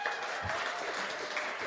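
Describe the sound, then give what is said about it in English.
A crowd claps steadily, a dense, even patter of many hands that holds at a constant moderate loudness from start to finish, with no voices standing out. “What do we think on a terrifying on a clap scale?”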